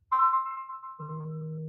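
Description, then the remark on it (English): A phone ringtone plays a short electronic melody, a steady high tone shifting to lower sustained notes, heard alone with no talking over it. “Your phone's freaking out, man.”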